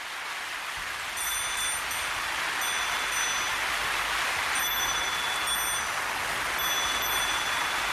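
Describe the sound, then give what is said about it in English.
Steady, dense hiss of rain falling continuously, broad and wash-like, with faint high-pitched tonal chirps or whistles from turkeys recurring in the background, and a bike also part of the scene. No voices are present. “Rain, bike, and turkeys.”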